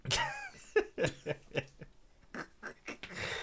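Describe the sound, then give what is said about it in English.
A harsh, rasping coughing fit after smoking cannabis: a long run of sharp, loud hacks in close succession, with ragged breaths between them. “This nigga, you know, you coughing off the loud.”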